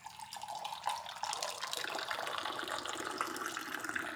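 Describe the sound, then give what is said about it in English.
Tea pours steadily from a teapot raised about a foot in the air back into a cup, a continuous splashing trickle with a brighter gush partway through, lasting a few seconds with no talking. “Right, so now I pour that back in.”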